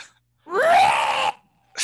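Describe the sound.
A person imitates a King Kong or Godzilla scream: one loud, harsh, raspy shriek lasting under a second, its pitch sliding upward before cutting off abruptly, followed by a brief vocal sound.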